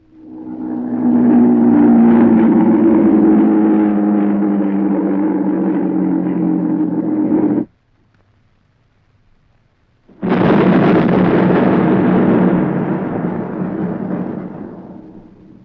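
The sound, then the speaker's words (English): A V-1 flying bomb (robot plane) over London: its loud, harsh droning engine roars for several seconds, cuts out abruptly as it dives from the sky, and after a brief silence its warhead explodes heavily, rumbling and slowly fading. No voices. “In London, the last robot plane had dipped its warhead and dived from the sky.”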